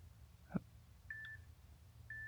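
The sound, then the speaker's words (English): Quiet electronic beeps for a new quiz segment: a brief click, then two steady tones around a second apart, the second cut off at the end, over a low background hum. No one speaks. “What I meant to say was, this is what the beeps will sound like.”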